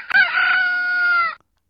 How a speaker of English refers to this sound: Correct. The answer was rooster.